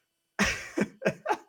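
A quick run of four muffled, stifled coughs from a person with COVID, moderately loud, each a short breathy burst after a moment of silence, with no talking.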